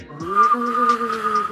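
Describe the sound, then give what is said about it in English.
A person whistles and hums at the same time, a brief eerie mystery-TV-style tune, holding one steady high whistled note over a lower, gently wavering hum, at moderate volume with no talking. “Anytime like mystery TV shows come on, I always like imagine it. It's like a like whistling and.”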